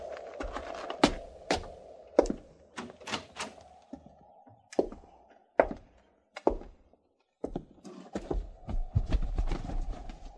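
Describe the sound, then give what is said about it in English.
Horses' hooves clop in an uneven, shuffling rhythm of sharp knocks on hard ground, with a low rumbling rustle building near the end and no voices. “Quint, hobble them horses and get up here.”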